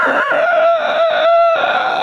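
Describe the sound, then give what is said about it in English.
A loud rooster crow used as a buzzer sound effect, one long, strained cock-a-doodle-doo with sustained harmonic pitch that rises and holds for about two seconds, with no talking over it. “That's a very long and scary buzzer.”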